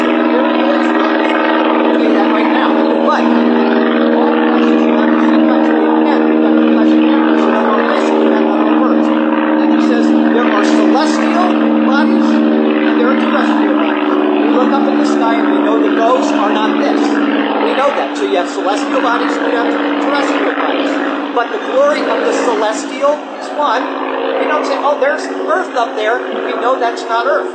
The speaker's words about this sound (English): That is not a bird. That's an airplane.